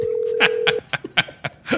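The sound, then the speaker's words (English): A steady telephone dial tone hums briefly, then a quick, irregular run of about eight keypad beeps follows as a number is dialed to call someone, clear with no one talking. “Are you calling my mom?”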